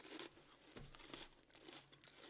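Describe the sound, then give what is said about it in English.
Crunching of Beef Monster Munch crisps with crinkling of the snack packet, a dense run of crackly bites and rustles lasting a couple of seconds, quiet overall with no talking. “These are serious though. They are serious, but you can't knock Monster Munch.”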